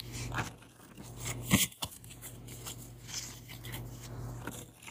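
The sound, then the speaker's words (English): Quiet rustling and papery riffles of a deck of cards being shuffled, with one sharper burst partway through, over a low steady hum. “All right, let me shuffle one more time. Actually, two more times.”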